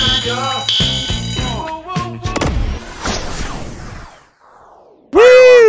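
A loud, harmonic alarm tone blares in at the end, following a busy stretch of tonal electronic sounds, sharp bursts and crackling noise that fade out briefly.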